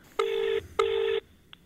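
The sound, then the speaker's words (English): A telephone call being placed: two identical electronic phone tones, each lasting under half a second with a brief gap between, forming a double-ring pattern. A faint click follows, with no talking. “Let me just give her a call.”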